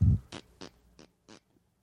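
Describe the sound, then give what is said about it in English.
A low, breathy thump followed by four short, raspy fart bursts made into a microphone, spaced about a third of a second apart, each a little weaker than the last, with no talking. “Well, that is a really good farter. Pretty good fart.”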